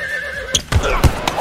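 A horse whinnies with a wavering, high-pitched call, followed by a few heavy hoof thuds on hard ground.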